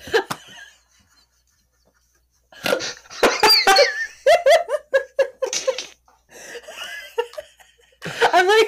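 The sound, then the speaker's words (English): A loud fit of wheezy coughing, rough bursts tumbling into quick rhythmic hacks with breathy, strained gasps between them, stopping briefly and then starting up again. “I'm like wheeze coughing, but the wheezes aren't getting picked up.”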